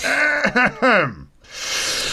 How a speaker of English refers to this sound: Okay, I'm going to have to clear my throat first.